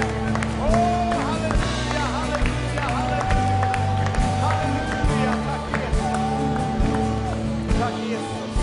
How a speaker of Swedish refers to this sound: Ska vi bara ta och jubla lite grann inför Herren och höja lov till honom? Halleluja!